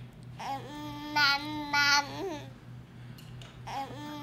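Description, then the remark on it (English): A baby babbles in a drawn-out, sing-song vocalization that sounds a bit like "mama," with rising and falling pitch, a few louder bursts, and a short babble again at the end over a low steady hum. “No, I mean, hold the baby. That's just making a sound.”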